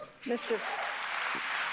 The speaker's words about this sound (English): Really? They're applauding him and wooing? I don't know. I don't get it.